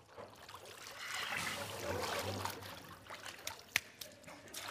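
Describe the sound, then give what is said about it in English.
Water gushes out in a broad, steady rush that tapers into a light trickle, with a few sharp drips and splashes near the end, moderately loud. “He pushes out more water than I expected.”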